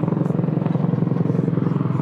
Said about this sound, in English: That's a loud chopper.